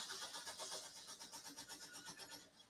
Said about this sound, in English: Who's trying to start a car and failing in the background? The wife is playing Fortnite, sir. My wife sounded like she was trying to start start old Chevelle or something. Like she's trying to start a Chevelle. No, she's playing Fortnite.